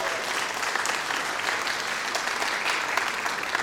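An audience gives a round of applause as a speaker comes up, many hands clapping together in a dense, continuous patter that holds at an even loudness for a few seconds with no voices standing out.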